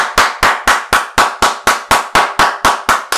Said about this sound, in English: Longest, the loudest clap.